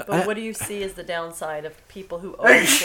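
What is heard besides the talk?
sneeze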